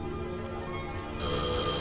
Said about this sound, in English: Answer that phone.